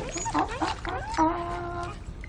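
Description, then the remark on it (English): A dog in a movie scene whimpers: a few short, high, wavering whines, then one longer drawn-out whine that trails off, over a low background rumble. “Hey, tell you the truth, brother, between you and me, that thing with the dog is coming off a little fruity.”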